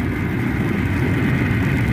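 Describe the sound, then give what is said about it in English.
A supersonic robot plane roars steadily during a chase through the skies over New York, a dense, low, rumbling engine drone that stays loud and unchanging throughout, with no voices over it. “And the supersonic chase is on through the skies over New York.”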